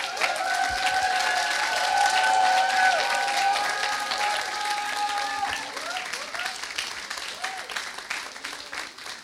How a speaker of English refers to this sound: Wow, give it up for the …. Appreciate them. Wow, that was a really nice song. Are you guys excited to be in church today? Don't stop clapping.